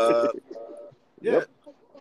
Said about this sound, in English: Oh, God. Bird.